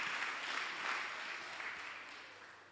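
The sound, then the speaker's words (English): A church audience claps together at a preacher's request in a dense, steady burst of applause that holds loud for a few seconds before slowly thinning out. “Clap for me so that I can preach, please.”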